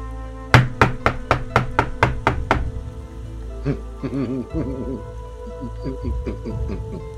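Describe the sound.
A quick, insistent run of about nine loud knocks by Ozil on the door of a house near the Dead Goat in the middle of the night, over a steady hiss of rain, followed by voices talking as the rain continues.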